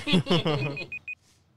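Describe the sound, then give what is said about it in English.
A set timer alarm beeps: short, high electronic tones start under a voice, then two clear beeps sound alone in quick succession, moderately loud. “That was a timer set, my bad.”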